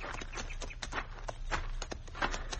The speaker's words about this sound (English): Get down off your horse, senor. All right. We'll lead our horses over onto that flat, where they'll be in the shade. Come on, Diablo.